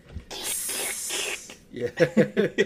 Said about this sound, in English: But it was the snake sound effects. Every time he tries to do like the snake strike.